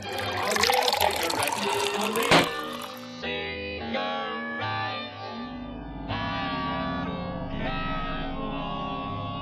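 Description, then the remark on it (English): Water pours from a jug onto a radio in a loud, steady splashing stream for about three seconds, ending with a sharp splash, followed by sustained ringing, tonal sounds with no one speaking. “Hang on, let me just pour this jug of water onto the radio.”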